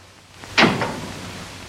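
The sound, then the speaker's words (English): Jim's door opens as Carol Stafford shows up: a sharp clunk followed by a softer second knock of the latch, then quiet background hiss. “She shows up at Jim's door, and she's mad because they have a date and Jim has forgotten.”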